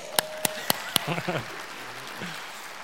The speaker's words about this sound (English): Somebody give a hand clap to God.